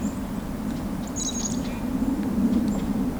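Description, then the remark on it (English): A mixed feeding flock of birds, including black-capped chickadees, a red-bellied woodpecker, goldfinches and a white-breasted nuthatch, gives scattered high, thin chirps and calls during a Christmas bird count, a few overlapping notes over a steady low outdoor rumble, with no one talking. “There's even a red-bellied woodpecker with this group.”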